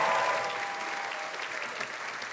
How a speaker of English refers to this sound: Can we give a big round of applause for Kid?